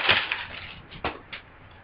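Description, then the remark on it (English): Brown paper bag rustling and crinkling as a beer from the Lost Abbey Brewery of San Marcos, California is pulled out, with a burst of crackle at the start and two sharper crinkles near the end; no talking. “Take it out of this fancy brown paper bag.”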